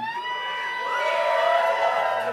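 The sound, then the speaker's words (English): A live audience at a Marvel panel breaks into loud, sustained high-pitched screaming and whooping on cue, many voices overlapping in a bright wall of sound that swells slightly and holds steady for a couple of seconds. “And also, this is your moment to scream weird if you want to find it later on the podcast.”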